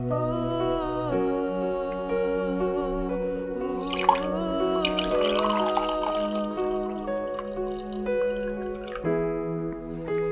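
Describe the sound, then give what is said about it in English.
Wine is poured into a cup for a few seconds, a soft, trickling splash with a rising gurgle as it fills, heard over steady, sustained background music. “Likewise, the night that he was betrayed, he poured out the wine.”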